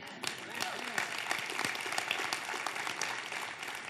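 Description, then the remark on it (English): An audience applauds steadily, a dense wash of many hands clapping at once that holds for several seconds without letting up. “It's easy to clap.”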